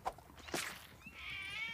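A mother cat meows, a drawn-out high cry rising in the second half, preceded by a couple of soft thumps. Fairly quiet, with no talking.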